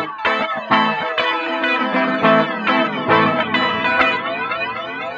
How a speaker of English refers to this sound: We'll take the guitar we've used earlier and send it to a few of those bus presets. Formant Sweep Delay.